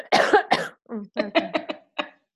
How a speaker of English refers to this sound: So glad I didn't cough in the middle of that. No, you did not. No, it was... I'm going to do one now.